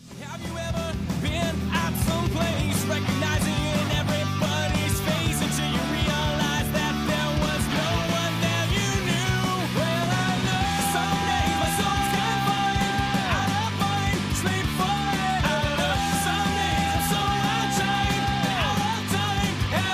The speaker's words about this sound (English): First thing I noticed, Mike, very raw punk sound. Oh, yeah. The blast beat, the distortion on the guitars. Other bands have distortion, but the sound that they've created, I think, is a lot different from your classic mid-2000s pop punk band.